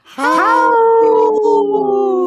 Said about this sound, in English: Howl! Wow, that was a strong howl.